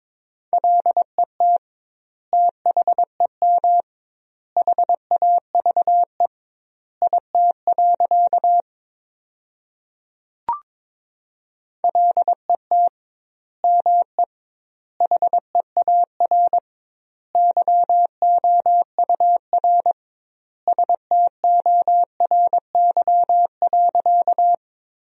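Morse code sent at about 22 words per minute with doubled word spacing, spelling sentences from the 300 most common words: a steady, mid-pitched beeping tone keyed in rapid dots and dashes, broken by a pause midway with a single faint click, then continuing.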